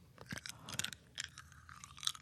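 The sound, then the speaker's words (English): Crisp crunching of small hard Tic Tac mints being chewed in a mouth, with several irregular bursts of cracking and grinding spread across a couple of seconds, no talking. “I still have Tic Tacs in my mouth, so.”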